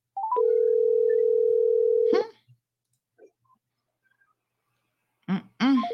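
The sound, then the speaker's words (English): A steady phone tone drones for about two seconds, then cuts off abruptly, followed by brief quiet clicks and a short electronic chirp at the end, as an outgoing call is declined by the person being called. “Declining call.”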